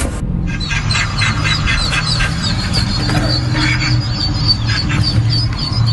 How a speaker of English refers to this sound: one of the firefighters used duck sounds that he got from a YouTube video to lure them out